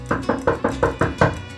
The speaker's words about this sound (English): Don Diego was interrupted by a frightful knocking at the mansion's front door.